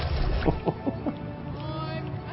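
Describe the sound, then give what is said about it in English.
A water splash sound effect, made by Jeffrey and Bill over several passes: a cluster of quick, wet sloshing hits over about a second, followed by a steady watery wash that continues to the end. “It took several passes, between Jeffrey and Bill to make sure that was the right sound. So that was a good splash.”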